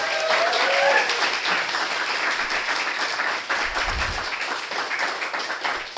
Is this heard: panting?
no